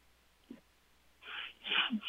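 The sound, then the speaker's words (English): A person yawns, starting with a faint low vocal catch, then swelling into a long, breathy, airy exhale that rises and fades out with a small groan at the end. “And sorry about that yawn there.”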